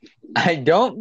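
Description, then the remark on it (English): A voice makes a short mouth imitation of fart sounds, two buzzy voiced bursts with sliding pitch over about a second, no actual words. “I'm making fart sounds.”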